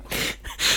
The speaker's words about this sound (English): The worrying thing, that was a hiccup. It started out as one, didn't it? It certainly didn't fucking end as one.